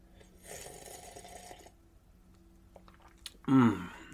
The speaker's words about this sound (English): Okay, maybe you didn't hear that. I tried making it noisier than normal, but I was just taking a sip of coffee. It's tricky to make sipping loud at times.